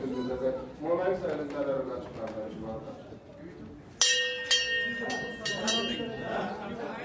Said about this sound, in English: Yeah, we're standing here on the edge of the ECX trading floor. So right now we're looking at the coffee session about to start. So the traders are in the floor. We've got the buyers and sellers, and I'm about to go ring the bell.